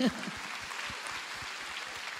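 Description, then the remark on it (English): A church audience claps steadily during a sermon after being invited to clap, a dense, even patter of many overlapping hand claps that holds at a moderate level for the whole stretch, with a brief voice at the very start. “Now, you can clap. Come on, you can clap.”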